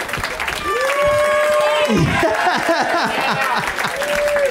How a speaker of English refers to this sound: Thank you. I appreciate that. The thunderous cheer and applause for that great street joke.